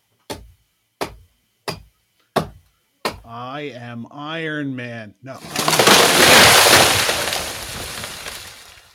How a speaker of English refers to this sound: Oh, they're chopping down the tree. Ah, chopping down a tree.